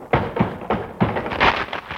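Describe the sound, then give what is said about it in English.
A boat steered along a rocky coast scrapes and bumps against a reef: a run of about five heavy, hollow thuds at an uneven rhythm, fairly loud, with a gritty rumbling in between and no voices. “I think you struck a reef.”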